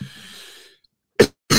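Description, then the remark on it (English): A soft, breathy rasp fades out, then after a brief pause come two sharp, forceful coughs from a person with something stuck in their throat. “I got something stuck in my throat. I hate coughing, especially right now because everybody thinks you got the plague if you cough.”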